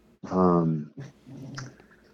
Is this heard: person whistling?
no